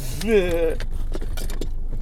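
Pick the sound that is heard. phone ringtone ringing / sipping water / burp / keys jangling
keys jangling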